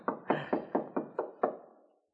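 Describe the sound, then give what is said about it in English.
Seven firm knocks on Mr. Stone's apartment door at 2 a.m., in a steady, evenly spaced rhythm, fairly loud, each with a short resonant ring and no voices. “There's one way to find out. That's his apartment door.”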